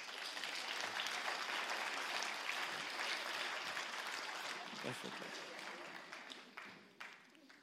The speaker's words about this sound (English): Why don't we give these families a round of applause?